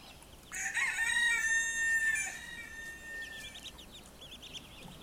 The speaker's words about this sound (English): So I found a hen gathering her chicks from a dog. Okay, so let's watch that.